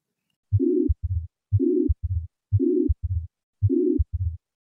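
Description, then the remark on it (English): Four steady heartbeats, each with a harsh, buzzing pansystolic murmur of a ventricular septal defect filling the whole gap between the first and second heart sounds, best heard between the second and fourth intercostal spaces at the left sternal border, clear with no voices. “A physical exam can detect the VSD murmur, best heard between the second and fourth intercostal spaces at the left sternal border, as a pansystolic murmur with loud second heart sound if pulmonary hypertension is present.”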